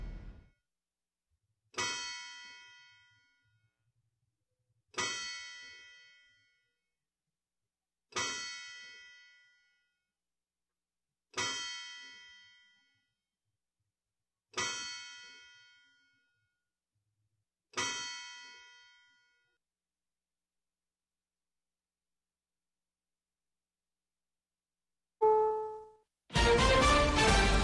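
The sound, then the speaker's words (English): A courthouse clock bell tolls 7 o'clock in slow, evenly spaced strikes, aired on WGNS radio in Murfreesboro, each ringing bright and loud before fading, followed at the end by a brief electronic tone and a burst of sound. “Courthouse clock time, 7 o'clock.”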